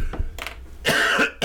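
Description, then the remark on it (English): A congested person coughs several times in quick succession, harsh bursts with one longer rattling cough in the middle, with no talking. “I apologize for all the coughing.”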